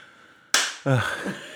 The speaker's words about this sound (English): Yeah. There you go. You got a clap. More than anyone else got.